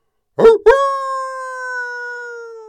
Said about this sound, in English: Now they heard. That was Willie the Wolf.